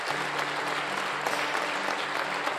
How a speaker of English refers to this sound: Come on, give the Lord a big hand clap this morning. Yeah.